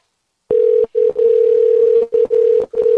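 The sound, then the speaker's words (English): A steady electronic phone ringback tone at one pitch while calling a phone, broken by irregular short gaps and stutters, giving an odd, uneven ringback rather than a normal ring pattern. Loud, no voices. “Even his phone ring is all fucked up. It's like super lazy.”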